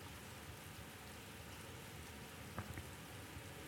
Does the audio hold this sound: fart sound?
no